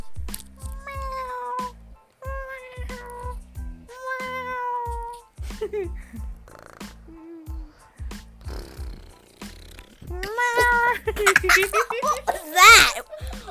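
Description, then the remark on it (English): A person imitates a cat, giving three drawn-out, tonal meows in a row, followed by giggling and laughter with some squeaky, playful vocal sounds near the end. “I know how to, like, meow really good. Okay, meow.”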